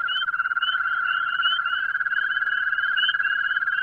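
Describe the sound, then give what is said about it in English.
A chorus of common garden toads trills steadily. Their high, buzzing calls overlap into one continuous, pulsing drone that holds at an even loudness throughout. “And listen to the way they all get together into these toad choruses, all twirling away.”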